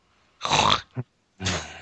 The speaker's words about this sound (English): Gesundheit.